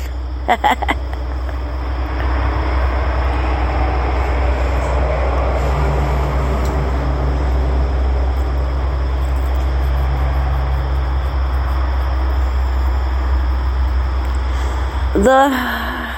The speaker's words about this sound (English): The road's busy this morning. Cars driving up and down.